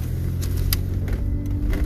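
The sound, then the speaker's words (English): A car's low, steady engine rumble fills the cabin at a constant level, with a few brief faint clicks and swishes, as the car sits in a traffic jam in a neighborhood. No one speaks. “I'm in a neighborhood in a fucking traffic jam.”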